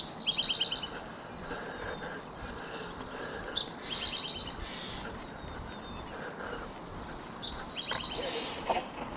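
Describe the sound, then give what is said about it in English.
A Steller's jay squawks in three harsh, rapid bursts spaced a few seconds apart, over a steady rustling, crunching background noise. “A little Stellar's Jay action, a little squawking going on.”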